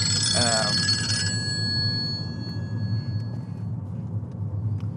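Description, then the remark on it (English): A telephone bell rings loudly with a rapid metallic trill for about a second, then its tones fade away slowly over a steady low rumble. “The phone ringing now.”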